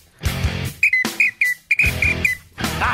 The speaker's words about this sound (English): It's been a while for the Little Red Whistle, so we had to make an early appearance here into the show.